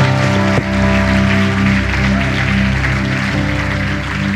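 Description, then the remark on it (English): An audience at the Anchor Church claps and applauds steadily as a hand clap of praise to the Lord, over sustained organ or keyboard music, the dense clapping holding at an even, loud level throughout. “Why don't you give the Lord a hand clap of praise one more time?”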